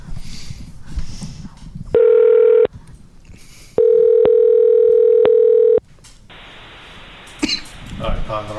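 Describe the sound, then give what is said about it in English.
A loud, steady telephone tone sounds twice, a short burst then a longer one, with faint clicks from dialing as a call is placed to a wrong number, while muffled voices and a cough murmur in the background between and after. “Oh, I called the wrong number.”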